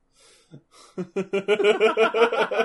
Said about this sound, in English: Because you see how the camera's like right there? It could be his breathing. Big guy like that needs to breathe.